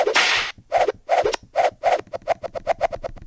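Loud, sharp whip cracks snap in quick succession after an opening burst of noise, the rhythm speeding up into a rapid, steady flurry of snaps.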